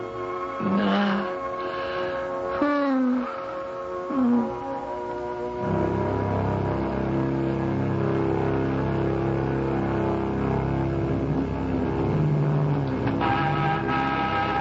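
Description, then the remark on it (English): A sports car engine revs in a few rising, growling bursts, then settles into a steady, throaty running drone, fairly loud throughout, with no talking. “You still have the sports car. Get in.”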